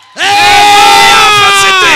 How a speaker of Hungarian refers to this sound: Már indítod a tapsot? Jó? Már a lányok sikoltanak, mint állatok?